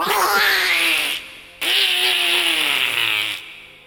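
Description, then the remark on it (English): A person imitates Donald Duck getting mad, making loud, raspy, sputtering squawks in two long bursts separated by a short pause, with a buzzy, gravelly tone and wavering pitch. “But then he gets mad and he sounds like that.”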